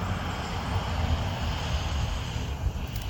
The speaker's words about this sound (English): And as the diesel truck goes by